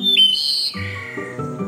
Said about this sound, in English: Ian also hears birds singing.